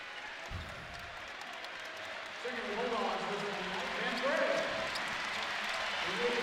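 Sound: arena crowd applause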